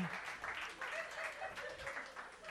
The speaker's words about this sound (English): A medium clap. Okay. Let's get that medium clap again mixed in with a little bit of laughter. It's going to feel weird, but once you start, it's going to feel okay.